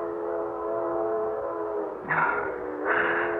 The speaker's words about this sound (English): Oh, that train whistle. It's been driving me bats all morning. I must be hearing things. There aren't that many trains a month through Dover Ridge.